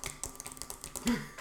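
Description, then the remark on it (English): Quick, uneven clicks and taps imitate typing on a computer keyboard, fairly quiet, with a slightly louder tap near the end and no talking. “you ain't typing shit, flight delays, right?”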